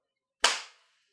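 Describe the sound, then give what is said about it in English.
One sharp, crisp hand clap rings out alone in silence, a bright snap that fades within a few tenths of a second, made as a slate to mark where a video recording begins. “Okay, clap one more time.”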